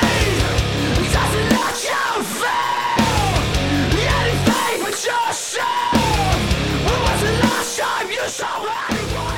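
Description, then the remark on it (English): Harsh, screamed vocals in the intro of a rock song, shouting "run, you coward, you run" over loud, dense rock instrumentation, the strained shouts rising and falling in repeated bursts throughout the passage. “So I've always really liked the intro of this song, just screaming, run, you coward, you run.”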